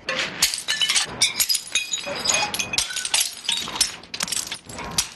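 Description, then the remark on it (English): Thrift store ceramic plates are smashed by employees letting off steam, repeatedly in quick succession, each crash followed by scattering shards and clinking fragments, loud with no talking. “Some companies actually buy thrift store plates for their employees and let them let off some steam with them.”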